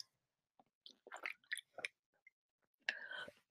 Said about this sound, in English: And I'm going to take a big swig of water.